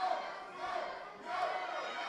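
A large wrestling crowd shouts and jeers in a steady, continuous roar of disapproval at a wrestler being urged to join the Pink Gang, swelling slightly in the second half, with many overlapping voices and no single clear words.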